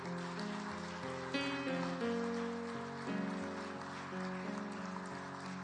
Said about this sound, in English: And we're clapping because it's a good decision.